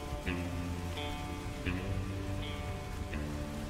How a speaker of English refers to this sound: Your clothes are soaked. The ground is soaked. You just hear the sound of the rain around you as you kind of stumble up out of this bunker.